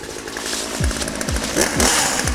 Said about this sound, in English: So, here to chainsaw down this tree is our theme song composer, KTF Terrison.